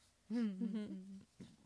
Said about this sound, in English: I burped.